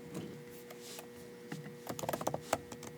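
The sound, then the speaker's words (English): Clicking of keys on a computer keyboard, sparse at first then a quick burst of several sharp taps, with a low steady hum underneath and no talking. “Listen to the keyboard ASMR.”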